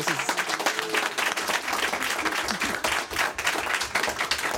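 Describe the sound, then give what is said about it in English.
Sustained applause from an event audience for the panelists and moderator, a dense, steady patter of many hands clapping at once, fairly loud and continuous for several seconds, with a faint murmur of voices beneath. “And please give a round of applause to our panelists and moderator.”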